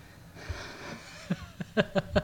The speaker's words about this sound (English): I don't know why you're out of breath, because you're the one been taking the time to get your workouts in lately, and I've been with kids and haven't, but I'm not panting.